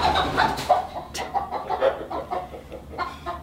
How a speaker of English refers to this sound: Chickens.